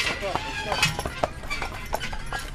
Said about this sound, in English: While families take horse-drawn buggy rides past almond and walnut orchards,